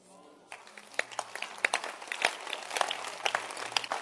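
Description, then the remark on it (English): An audience bursts into clapping after a brief voice trails off, the claps sharp and irregular, growing denser and steadier over a few seconds at moderate loudness. “Now, don't clap. Don't clap.”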